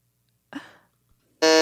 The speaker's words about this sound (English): Did I do the wrong buzzer for the first one? No, I did the right buzzer. I was right on the first one.